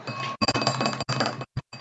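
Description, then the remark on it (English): Empty drinking glasses clink and rattle against each other in a busy run of bright, ringing knocks, then a short pause and two quick final clinks. No one speaks. “These glasses are empty, bitch.”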